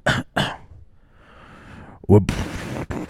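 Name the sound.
imitated cough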